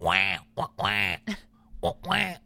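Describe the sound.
Three loud, nasal, buzzing quacks, each about half a second long, come in an uneven sequence with brief pauses. They sound like a duck call or a voice imitating a duck.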